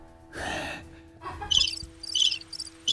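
A crickets sound effect: crickets chirp in quick, high-pitched bursts repeating through the second half, after a soft breathy rush of air near the start; no one speaks.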